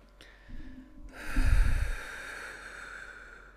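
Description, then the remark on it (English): A single deep, noisy breath drawn in during a breathing exercise, rushing and airy, then easing into a long, softer exhale that trails off. No talking. “So let's do a breathing, right?”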